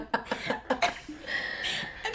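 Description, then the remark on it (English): A run of short, sharp, loud coughs in quick succession, followed by a steadier muffled rustling noise as the microphones are covered. “Sorry, we're laughing at my stupid ass cough.”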